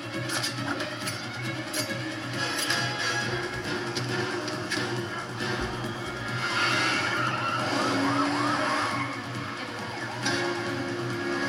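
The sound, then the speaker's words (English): A loud, continuous car chase from a movie: engines roaring and tires skidding, with a police siren wailing through the dense traffic noise. There is no talking. “Oh, this scene where the fucking agent jumps from the cop car to the other car.”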